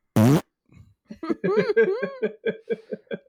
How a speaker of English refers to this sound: He dies and farts. That's the best. Oh, I didn't hear that. Yeah, oh no, oh, he farts. That's so funny.